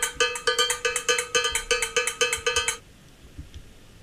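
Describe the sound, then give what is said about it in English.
A cowbell struck rapidly in a steady, fast rhythm, with about twenty bright metallic clanks with ringing overtones, then it stops abruptly, leaving near silence for the last second. “A cowbell? Yes. It's a cowbell.”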